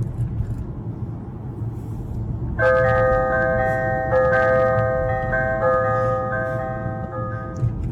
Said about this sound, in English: That's his car. His car chimes church bells when we pull up to the church.